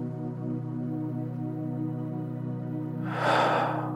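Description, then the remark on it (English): A steady, low droning tone hums throughout, and near the end a single deep, airy breath in rises clear over it. “Breathing in.”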